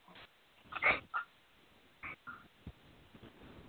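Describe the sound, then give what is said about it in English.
A cat lets out a few short, faint meows and chirps in scattered bursts, with quiet pauses between them and no one talking. “Oh, my God, my cat.”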